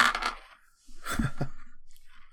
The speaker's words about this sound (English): Just hilariously bad dice rolls. So that is the second worst roll I could have got from 2 dice. 6 total.